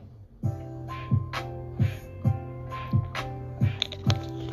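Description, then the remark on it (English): Someone gulps down water in a steady rhythm, about seven or eight wet swallows, with a faint constant hum in the background and no talking. “I am running late today, and let me drink on some of this water.”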